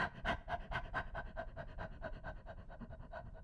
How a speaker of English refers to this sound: So let's just start with a simple yawn. Maybe stretching your wrists and your shoulders, circling. And let's try panting.